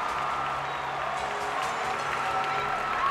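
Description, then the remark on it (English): A huge crowd in the stadium at the London 2012 Olympics cheers and applauds as gymnast Michaela Maroney's name is called at a medal ceremony, a dense roar of voices and clapping that stays loud and steady throughout, with no pauses. “Finally, her name is called, prompting a huge cheer from the crowd.”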